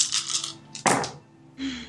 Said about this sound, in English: Oh no, that's a lot of ones. 1, 2, 3, 4, 5. Wait, you rolled 8 dice? I rolled 8 dice and I got an 18. Oh, okay. Wow. 5 of them were ones. But yeah. 5 of them are ones.